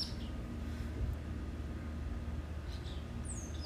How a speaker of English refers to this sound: sitting in a chair on my deck on a yet still muggy, but much better than it was today, 90-day heat wave summer, but I still welcome it. Taking in the birds, squirrels, little suburbia critters.